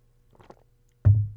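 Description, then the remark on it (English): A few soft, wet mouth sounds of someone sipping water, followed by a sudden louder low thump that fades out, like a glass being set down. No one speaks. “And then lastly, I'm gonna take a sip of water because my mouth is dry.”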